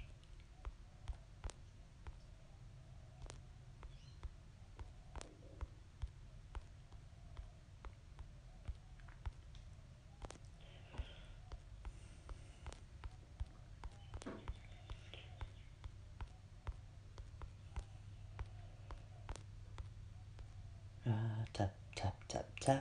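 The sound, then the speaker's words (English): Irregular tapping on a computer keyboard: scattered sharp little clicks with uneven pauses, quite quiet, over a low steady background rumble. The keystrokes turn into a quick, dense flurry near the end. “I wonder what my typing will make if we put it in a song.”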